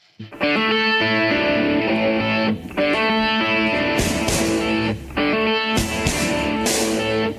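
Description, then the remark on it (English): Loud rock music with distorted guitars and punchy, steady drums, with crashing cymbal bursts rising in the second half and a couple of brief drop-outs between sections. No one speaks. “I just fucking love that drum sound.”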